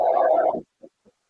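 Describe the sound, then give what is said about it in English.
A white noise machine's heartbeat setting: a long, low, muffled throb followed by two much fainter, short pulses. No voices. “Why don't you go to sleep while this huge giant's heart is beating?”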